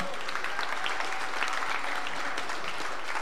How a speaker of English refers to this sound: Clap your hands.